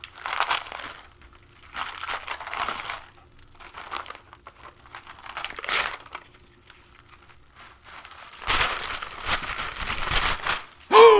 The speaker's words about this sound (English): Wow, and that is some fancy-ass wrapping paper. Oh, it's almost too pretty to open. Almost.